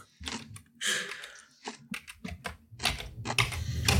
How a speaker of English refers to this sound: Why are we chewing in the ear? What the fuck is going on?